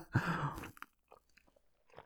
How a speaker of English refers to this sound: All right, I'm going to have a sip of my coffee.